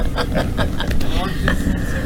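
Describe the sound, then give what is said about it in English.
Steady low engine rumble fills a car cabin stuck in a traffic jam on the way to a printer, with soft bursts of noise and a faint voice over the constant drone. “We are going to the printer, get the stuff done, but we are stuck in the traffic jam.”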